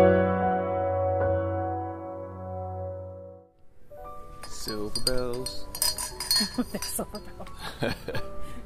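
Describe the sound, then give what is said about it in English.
A steady ringing tone gives way to bright, metallic jingling of silver bells, with rapid overlapping clinks and shimmer, while people talk underneath. “They're actual silver bells.”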